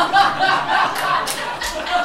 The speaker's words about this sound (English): By a show of applause, how many cis folks in here feel compelled to applaud?